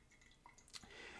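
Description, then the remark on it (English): Quiet dripping of finely ground coffee through a pour-over filter after the second pour, dripping slightly slower than usual: a few soft, separate droplets plink, followed by a faint, steady trickle with a light hiss. No one speaks. “It's going to drip a little bit slower than usual.”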